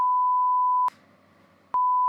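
A loud, steady censor bleep at a single pitch sounds twice, broken by a short stretch of low, muffled noise, then cuts back in and holds to the end.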